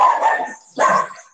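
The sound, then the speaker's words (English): Two sharp dog barks, one right after the other with a short gap between, loud and clear with no talking over them. “I think the dogs are in agreement too.”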